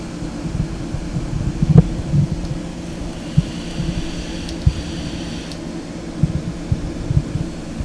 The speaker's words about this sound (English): I'm gonna fuck with my mic for a minute, and you guys fucking bear with me here. This is the nothing. Yeah. Yeah, it does. That made the air conditioner significantly worse.